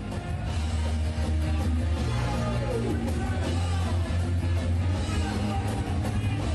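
A loud, dense live rock band plays continuously at a concert last night, with a guest singer up on stage screaming over heavy, distorted instruments and a thumping low end, as if recorded from within a noisy concert crowd.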